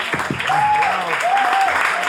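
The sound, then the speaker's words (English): Audience applause at the end of a round in a live game fills the whole stretch, a steady dense wash of clapping, with a couple of brief whistle-like tones gliding over it and faint voices underneath. “Give where's him a big round of applause.”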